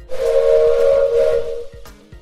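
A steam train whistle blows one long, loud, steady shriek over a breathy hiss of steam, then cuts off abruptly, leaving a brief faint tail.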